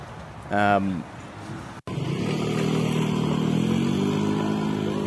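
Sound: road traffic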